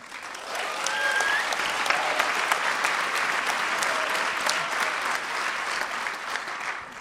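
A public radio audience applauds steadily, a dense wash of clapping that swells quickly and holds for about seven seconds before easing slightly, with a few faint whistles or calls mixed in, cheering a remark about Portland's inclusiveness toward transgender people.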